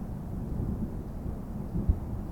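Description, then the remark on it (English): Low, steady rumble of thunder from a storm moving on over mountains under a dark sky, rolling without pause, a deep broad roar with a brief soft thump near the end and no voices. “I stared out at the mountains and dark sky before me. The storm finally moving on.”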